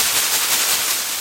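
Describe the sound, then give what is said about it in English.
College cheerleading pom-poms are shaken in a steady burst of bright, crinkly rustling, with faint rhythmic surges over about a second and no voices. “And if we need any leaf rustling sound effects throughout the rest of the episode, there we go.”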